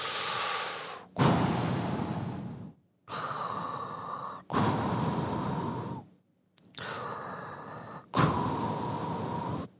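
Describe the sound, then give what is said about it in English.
Heavy breathing through a snorkel tube held in the mouth, loud: three slow cycles of hollow, rasping inhales and gusty exhales, separated by brief pauses, with no talking. “You know, that you stick it in your mouth, and it's like a tube. And you start breathing.”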